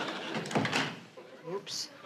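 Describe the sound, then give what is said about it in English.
A door swings shut with a short, solid thump as Samantha shuts it on the departing Kravitzes, followed by a quick murmured exclamation, an "oops", and a faint breathy hiss. “As Samantha shuts the door, you can see that she says, oops.”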